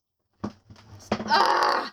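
A noisy drawer being pulled open: a couple of short knocks, then a loud, harsh scraping squeal that grinds on for about half a second before stopping.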